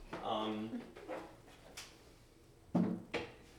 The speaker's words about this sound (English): I'm going to move real quick because that's squeaking really bad.